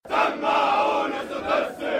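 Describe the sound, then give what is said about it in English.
Police recruits shout a chant in unison at the start of the day inside a large compound on the outskirts of Cairo, loud and sustained, the phrases rising and falling with brief dips between them, like a drill chorus bellowed together. “"Let me hear your loud shouts," they sing. "I have never feared death."”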